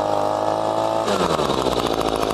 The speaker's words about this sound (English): A gas-powered leaf blower like this can create over 90 decibels of noise.